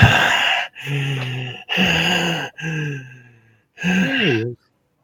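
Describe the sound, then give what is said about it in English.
A voice acts out a character's heavy, shaky breathing after a very emotional scene, in four long, loud breaths, voiced and trembling like sobbing gasps after an outburst, the last one wavering before a brief silence. “Anorin is breathing like heavily, like, you know, that breathing you get after like a very emotional scene”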